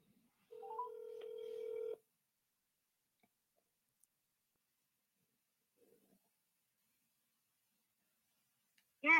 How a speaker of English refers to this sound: Just give me a second here. I apologize, but I'm going to do this live, so I'll even put the speaker here. I'm calling